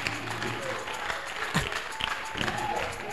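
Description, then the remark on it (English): A small audience claps weakly and unevenly, a thin patter of scattered hands that never builds into full applause, with faint crowd murmur underneath. “Oh, look, your clapping is sick. Your clapping is anemic.”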